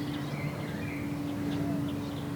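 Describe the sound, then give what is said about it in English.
A light aircraft that looks like a microlight, but with a lower engine drone and flying a little too high for one, drones overhead in a steady, low, unbroken hum that holds the same pitch throughout, with a few faint bird chirps above it. “It actually looks like a microlight, but the engine's got a lower drone than a microlight, and it's probably a little bit too high for a microlight, so it probably is a plane.”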